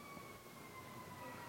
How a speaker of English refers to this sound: Who knows, that could be an ambulance right there. Think about that. You heard the sirens.